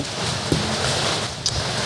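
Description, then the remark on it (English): Steady rain hisses across the whole clip with a low rumbling undertone, broken by a couple of brief sharper taps. No one speaks. “We actually do it in the rain too. Literally.”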